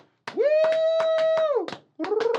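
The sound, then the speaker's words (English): Brisk, steady clapping from a live studio audience with sharp, evenly spaced hits, while a loud sustained high whoop rings over the first half and a second rising cheer comes in near the end. “Give yourself a round of applause, live audience.”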